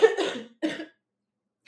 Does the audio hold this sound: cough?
yes